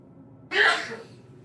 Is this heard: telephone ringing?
no